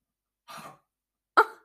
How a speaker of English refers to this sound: Oh my God, my dog is literally about to be sick.